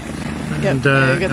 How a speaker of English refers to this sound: Looking up towards the helicopter, nodding at the pilot.